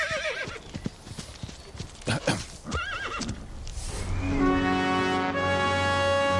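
Horse hooves clip-clop in a quick rhythm, then a horse lets out a loud, wavering neigh, followed by a long, steady, droning tone that holds to the end.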